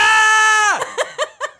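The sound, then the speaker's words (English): A person, asked to scream as if actually scared for their life, gives a loud, sustained high-pitched scream that holds steady, then slides sharply down in pitch and breaks into three or four short, choppy bursts that sound like nervous laughter. “Can you, how about you give a scream? Like a scream like if you were actually scared for your life.”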